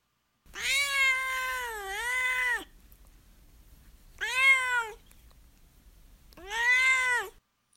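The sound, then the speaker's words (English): A cat named Duarte meows three times: one long, wavering, drawn-out yowl, then two shorter meows after brief pauses. No one is talking. “Now it's time for Duarte's Corner, where my cat of constant size, Duarte, will share his opinions about the book.”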